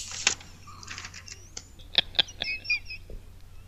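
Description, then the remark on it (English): Papers being shuffled: short crisp rustles and sharp crinkling snaps come in irregular bursts, fairly loud, with no one talking. “Or you can say, I need to shuffle papers, okay?”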